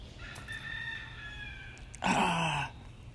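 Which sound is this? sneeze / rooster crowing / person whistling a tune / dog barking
rooster crowing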